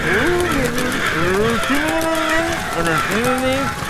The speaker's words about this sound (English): Okay, well, thanks to those birds, that was worse.